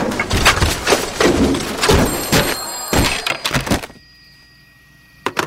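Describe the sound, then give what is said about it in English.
A door bangs open as police burst into an office, and a flurry of loud thuds, clatters and scraping follows as they turn over the room, tossing things about, then the commotion dies down to near silence with a couple of late knocks. “Suddenly, police burst inside and turn over the room.”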